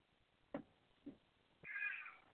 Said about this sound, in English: So did the cat. Hear the cat? The cat is now saying that it's... It was is the cat back? Did the cat open the door? You let the cat out. No, this is a different cat. Different cat? Yeah, this cat was sleeping on the bed and on the chair.